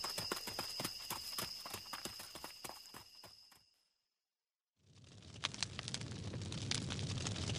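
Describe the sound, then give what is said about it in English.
Horse hooves clip-clop in a barn in a brisk, steady rhythm with a faint high whine behind them, stop for about a second, then a dense, loud crackling roar takes over. “We can head to the barn out back. We can steal some horses and get away.”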